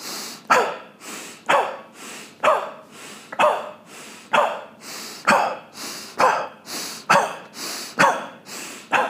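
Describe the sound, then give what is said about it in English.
About ten sharp, forceful exhales through the nose or mouth during a breathing exercise, the belly drawn up and in with each, in a steady, rapid rhythm, each a loud breathy burst roughly a second apart, with no talking. “taking one or two hands to your navel, your belly button, and just quickly drawing up and in every time you exhale to think about where that exhale should be emanating from.”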